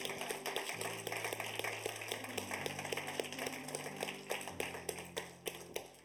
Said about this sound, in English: And we're called to praise the Lord, clap our hands, all you people, right? It wasn't a request, it was a command.